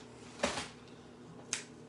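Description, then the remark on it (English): An On the Border cantina-style tortilla chip crunches twice, each bite a short, sharp, crackly burst with a pause of about a second between them, against a quiet background. “Nice and crunchy.”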